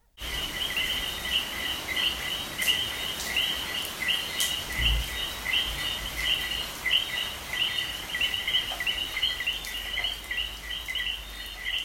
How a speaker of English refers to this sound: And I sent Melissa this recording of what we hear many nights, but this was particularly dramatic, of a sudden rainstorm followed by the chorus of enthusiastic frogs. And I can play it right now so everyone can hear it.